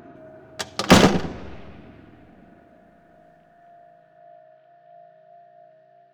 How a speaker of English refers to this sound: And with that, the metal door slammed shut behind her.